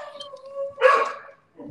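A dog lets out a drawn-out, howling whine, then breaks into one loud, rough bark that trails off, followed by a short low sound.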